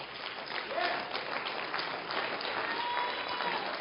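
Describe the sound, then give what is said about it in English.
An audience claps hands in praise to God, a dense, steady wash of many hands clapping at once that keeps going for several seconds, with faint voices mixed in underneath. “And He's here right now, and He's waiting for somebody to get up and give Him a hand clap of praise.”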